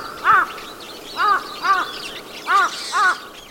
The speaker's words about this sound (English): And then there's the aptly named large-billed crow of East Asia with a massive humped honker of a beak.